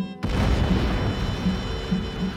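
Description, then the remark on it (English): A building demolition blast, set off with shaped charges and a plunger and bringing structures from Clark Tower to Holden Field down in a dusty heap, erupts abruptly after a brief silence, then continues as a loud, sustained low rumble and crackling roar for about two seconds, with no voices. “Gunshot cracks echoed all over the city, and the fire marshal's empire, the entire thing from the top of Clark Tower to home plate at Holden Field, came down in a dusty heap.”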